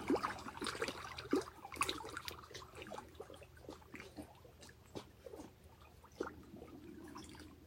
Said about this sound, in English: And we allow the music of the water to soothe us, sing to us.